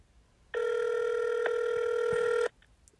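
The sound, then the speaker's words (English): A single steady ringback tone from an outgoing phone call hums for about two seconds, clear and even, then cuts off into near silence. No one speaks. “Let's call Zano.”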